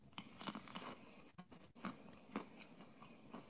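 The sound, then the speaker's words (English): Wet chewing with crunchy bites repeating at an irregular rhythm for several seconds, moderately loud, with no talking. “Oh, it's chewing.”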